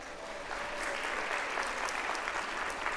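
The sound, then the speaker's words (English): An audience applauds for a woman steadily for a few seconds, a dense wash of many hands clapping at once with no pauses, sustained and fairly loud throughout. “All right, clap for her.”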